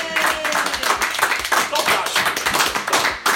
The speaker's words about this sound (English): When this is getting listened to on our all good podcasting sites, that applause will be much louder because he edits it. I'll mute the clap and I'll just.